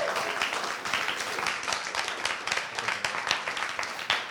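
An audience applauds steadily after a live music set, a dense wash of many hands clapping at once that holds at an even, fairly loud level for a few seconds without any voices rising above it.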